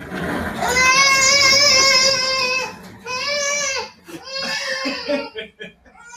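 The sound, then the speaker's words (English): A child wails in long, high-pitched sustained cries, the first lasting nearly two seconds, followed by a shorter cry and then choppier, sobbing bursts that break off near the end. “screaming a lot.”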